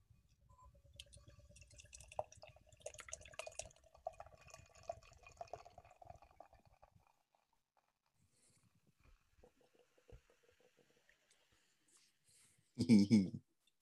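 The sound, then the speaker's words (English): Beer pours into a glass with a steady gurgling, fizzy splash for several seconds, then fades to faint trickles and drips, ending with a short, loud burst of sound. “And with that, I'm getting this in the glass.”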